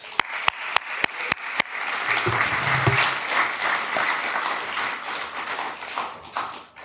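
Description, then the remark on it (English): A church audience breaks into steady morning applause to welcome guest preacher Dr. Jonathan Pennington, opening with a few sharp, evenly spaced claps before swelling into a dense, sustained wash of clapping that fades out at the end. “And so by your applause this morning, can we thank God and welcome Dr. Jonathan Pennington.”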